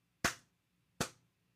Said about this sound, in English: Slow clap. Wow. Wow.